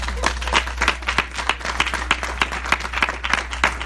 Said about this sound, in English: Yes. Just let's give you a clap.